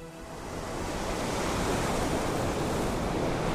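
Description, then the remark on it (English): Ocean surf rushes in and settles into a steady, full roar of breaking waves, a dense continuous wash of water noise with no voices. “The ocean lies just ahead.”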